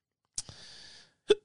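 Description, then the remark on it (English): Two sharp hiccups about a second apart, the first followed by a breathy exhale and the second with a brief voiced squeak; no talking. “And I got the hiccups, so I can't help that.”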